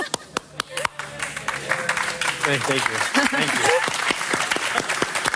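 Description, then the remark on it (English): A small group of dock workers claps, starting with a few sharp, spaced claps that quickly swell into steady, dense applause, while a voice speaks briefly over it. “But the dock workers start clapping.”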